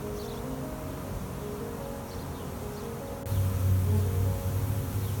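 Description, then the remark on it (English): A steady, dense buzzing of a honeybee swarm massing and flying in circles around a hive, holding at a constant drone, then swelling louder and lower partway through as more bees pass by. No voices. “So you notice here a lot of bees massing on the outside. A bunch of them, they're just kind of flying in circles here.”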